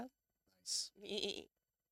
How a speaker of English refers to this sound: You just let some goats out there.